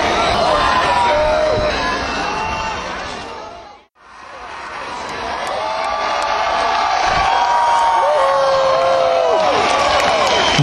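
A large crowd of roughly 5,000 to 6,000 people at the Memphis in May Beale Street Music Festival roars and cheers for a band's encore. Shrill whoops and whistles ride over a dense, steady wash of voices that briefly cuts out, then swells back loud.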